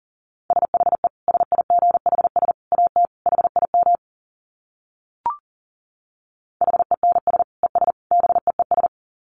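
Fast Morse code at about 40 words per minute: a steady mid-pitched tone keyed in rapid dits and dahs, two bursts separated by a pause with a single brief click between them.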